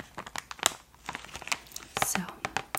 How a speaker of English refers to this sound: it also just has a nice crinkle sound.